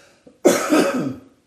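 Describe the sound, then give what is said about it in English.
A single harsh, raspy cough with a throaty rumble, preceded by a brief faint throat click and trailing off after about a second; no talking. “You'll have to excuse me as I cough my way through this one.”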